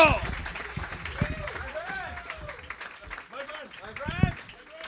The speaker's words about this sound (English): He's goddamn funny. Clap it up right now for Kyle Dunnigan. Kyle Dunnigan! Kyle!